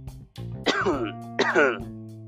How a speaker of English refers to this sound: I had to cough a little bit.